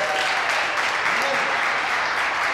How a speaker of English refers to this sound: All right, we'll clap for her.